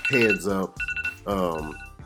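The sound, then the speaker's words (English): A show's segment timer alarm goes off with a loud, melodic electronic ringtone: two long swelling tones separated by a burst of quick, pulsing beeps, then a short final chirp. “Now that was our timer.”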